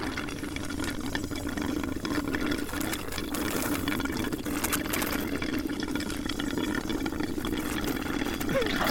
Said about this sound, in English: So, …, you hear him sucking on that soda for a while.